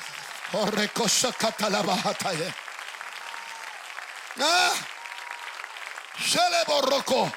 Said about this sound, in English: Clap your hands again if you would.